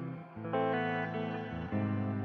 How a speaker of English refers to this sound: Brilliantly shaped as far as the tone of the guitar and the atmosphere surrounding it. I guess and there that is reverb kind of too.